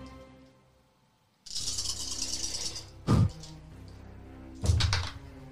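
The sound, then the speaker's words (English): Dice clatter and rattle briefly, then tumble out with two sharp knocking thuds as they land and roll to a stop. “Not only too many dice.”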